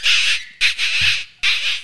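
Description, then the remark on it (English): A voice imitates a bleat with the lips to call in foxes, three loud, harsh, raspy squeals in quick succession, the middle one longest, high-pitched and squawk-like, with no talking. “Which is very similar to that noise I just made on my lips.”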